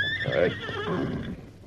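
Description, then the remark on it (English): A horse, the trick horse Silver, whinnies once, a loud, quavering neigh lasting under two seconds, with no voices over it. “I heard of that trick horse of yours, too. So see that he stays where he is, or I'll plug him.”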